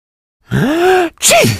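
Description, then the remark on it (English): A single loud sneeze: a drawn-out voiced intake builds up, breaks off briefly, then ends in a sharp, breathy burst that trails off. No one speaks. “In fact, this is what to say when someone sneezes near to you.”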